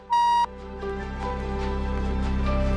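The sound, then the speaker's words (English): A single loud electronic beep from an answering machine, a steady pure tone lasting under half a second, followed by soft background music that continues underneath. “And if you could tell me a story, like Zig's story, speak to me after the beep.”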